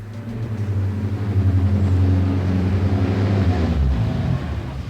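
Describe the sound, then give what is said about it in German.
A car engine hums steadily, its low drone dropping in pitch as the vehicle, driven by a woman, slows and comes to a stop near the end to pick up a hitchhiker. “Ich hab Glück, die Dame hält.”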